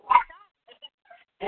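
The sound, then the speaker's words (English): A caller's dogs barking at home in Florida during a phone-in share, two sharp barks framing a few faint, high yips and whines in between, with no one talking. “Hi, this is my, well, pardon me, those are my dogs.”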